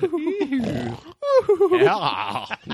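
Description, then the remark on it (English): A voice imitates how surfers who sleep on waterbeds snore, with two drawn-out, grunting, piggy snorts split by a short pause; the second is louder and more gravelly, rising and wavering in pitch. “That's how they snore.”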